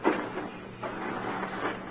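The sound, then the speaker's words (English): Digging a hole, heard from the cellar: a steady, coarse scraping with faint rhythmic swells about every half second over a low hum, moderately loud and continuous, with no voices. “This is what he was listening to from the cellar. That sounds like digging.”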